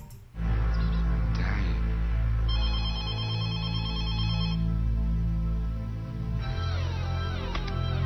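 A telephone rings loudly and continuously as Ferris phones Cameron. It is an electronic, tonal ring with a warbling melodic pattern that repeats, with no voices.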